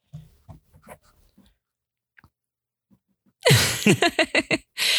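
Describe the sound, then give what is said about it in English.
A small pet dog panting or licking: a few soft wet sounds, a pause, then a loud run of about six quick rhythmic breathy bursts. “We now have a third co-host for the week who you may hear panting or licking at any given time. It's my dog.”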